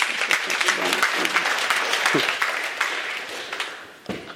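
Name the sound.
audience applause and cheering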